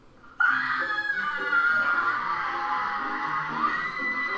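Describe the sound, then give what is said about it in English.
A woman lets out a long, sustained scream of fright at a giant rat, loud, starting abruptly and holding at high pitch for several seconds with slight wavering. “Why is she screaming like that?”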